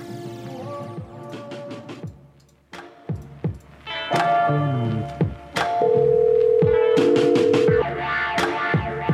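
A cell phone number being dialed: a series of short beeping key tones with clicks, followed by a steady electronic dial tone held for a couple of seconds, loud, with no voices.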